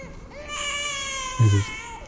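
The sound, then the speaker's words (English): A baby cries in the distance: one long, high-pitched wail with a steady, strained tone that fades at the end. A brief low thump sounds partway through. “And then, somewhere in the distance, you hear the sound of a baby crying.”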